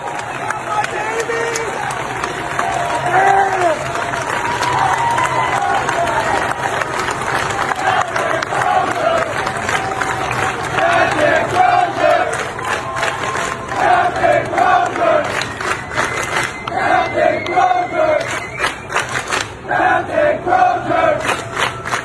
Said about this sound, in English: And then a video came out. As Captain Crozier left the ship, his crew started cheering for him.